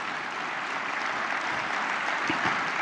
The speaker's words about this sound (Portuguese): Dá uma salva de palmas para isso, é muito lindo, gente, muito bonito.